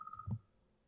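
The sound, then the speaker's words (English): A quiet mobile phone ring from an incoming daily call during a recording, just a brief pulsing electronic tone cut short, followed by a soft low thump, with no talking. “Oh yeah, this is around the time your mom does call every day.”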